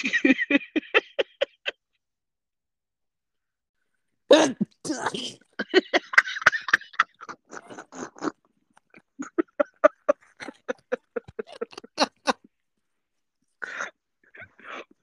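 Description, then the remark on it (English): A loud, forceful sneeze bursts out, followed by a second sharp explosive blast, set among runs of short rhythmic breathy pulses before and after. “I sneezed violently. Very violently.”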